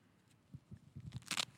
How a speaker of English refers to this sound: You hear that? Bro, should we know what that sounds like? Money. When I pull this out, when I pull out the Angry Bird Star Wars wallet, money time.